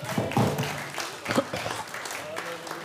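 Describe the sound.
An audience applauds a group steadily for a few seconds, a dense wash of clapping, with voices speaking and calling out over it.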